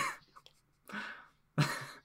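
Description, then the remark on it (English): A loud, raspy fart bursts out near the end, preceded by a couple of shorter, breathy bursts of noise, as a person tries to push it out quietly. No one speaks. “I tried to quietly push out a fart and it was quite loud.”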